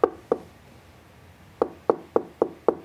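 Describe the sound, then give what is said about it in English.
A young boy knocks on a locked door at 3:35 in the morning, fairly loud: two hollow raps, a short pause, then five more in quick, steady succession, with no voices. “And he just sits there like, you know, like knocking.”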